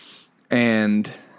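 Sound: dog barking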